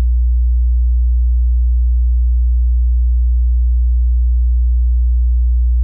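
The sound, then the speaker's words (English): A steady, low 60 hertz electrical mains hum drones without change for several seconds, a pure, deep buzzing tone at constant loudness with no other sounds or voices. “So this is a 60 hertz hum.”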